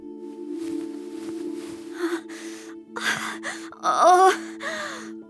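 A woman in labor gasps and moans in pain while giving birth, a series of strained breaths building to a loud, wavering cry near the end, without speech, over a low steady hum.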